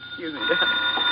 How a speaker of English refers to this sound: Yeah, well, you better answer the phone.